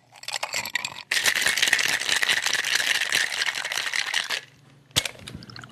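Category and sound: food or drink, ice rattling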